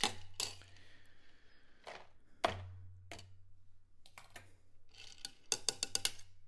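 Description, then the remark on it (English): Ice and water are dumped out of a martini glass: scattered sharp clinks and knocks, then a quick burst of rattling at the end, over a low steady hum. “Okay, so now we're going to dump the ice and water out of the martini glass.”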